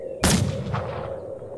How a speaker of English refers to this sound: Mal takes aim and fires.